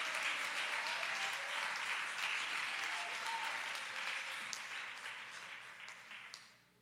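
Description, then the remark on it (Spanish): An audience applauds the Lord in a dense, steady wash of many hands clapping, loud at first and gradually tapering off toward the end, with no voices standing out. “Denle fuerte aplauso al Señor con todo el corazón.”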